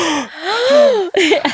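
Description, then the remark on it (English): A voice acts out a series of sharp, breathy gasps, rising and falling in pitch like someone reacting in shock to each new piece of information, loud, with a brief pause before a final gasp. “you were gasping every new piece of information.”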